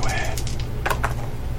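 A few sharp clicks and clatters of dice tumbling across a hard surface and landing on a three, scattered over about a second above a steady low background hum.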